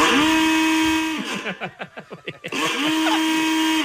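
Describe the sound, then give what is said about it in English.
An old-fashioned steam-engine-style car horn blares a steady, buzzy tone, breaks into about a second of rapid chugging pulses, then returns to the sustained blare. No one speaks. “Old-timey, like, steam engine.”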